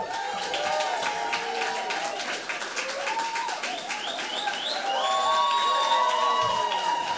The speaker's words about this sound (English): You just gotta quiet the clapping, haven't you, really?